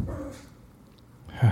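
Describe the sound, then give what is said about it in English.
A small puppy barks in short, yappy bursts, one at the start and a louder one at the end, with a quiet pause between them and no talking. “Yeah, that puppy is very happy every time someone walks by the door.”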